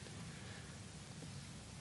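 Steady rain falls with a constant hiss and dense patter, evenly loud throughout, with no voices or other distinct sounds standing out.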